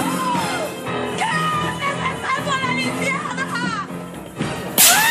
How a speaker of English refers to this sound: Who doesn't love a good gasp and slap?